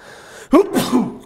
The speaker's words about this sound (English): Sorry, I just got better from COVID. That's why I sneezed, and I cannot smell anything.